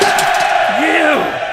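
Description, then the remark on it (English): A bloodthirsty crowd with a taste for violence roars densely and steadily, shouting and bellowing, with one voice rising into a drawn-out yell above the din for about a second. “We're a bloodthirsty crowd who has a taste for violence.”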